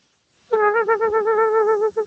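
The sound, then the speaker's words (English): A cartoonish 80s-style laser-eye sound effect, the eye lighting the way down darkening stairs: a loud, buzzy electronic tone at a steady mid pitch, warbling in quick pulses, starting abruptly after a moment of silence and stuttering briefly near the end. “Typical 80s cartoon sound there.”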